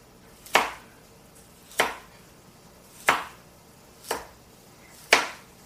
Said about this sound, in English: I am never a big carrot fan, so I cut it large and easy to get out.